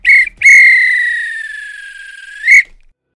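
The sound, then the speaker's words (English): A referee's whistle blows loud: a quick short blast, then a long sustained one that sags slightly in pitch, ending with another brief sharp blast. No voices. “If this were a real bit of extra time, this is when the ref blows the whistle because it's finished.”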